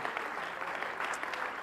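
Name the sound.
audience clapping hands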